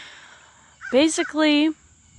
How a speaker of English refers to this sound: So disclaimer, I am outside for today's recording, so there's definitely birds cawing right now.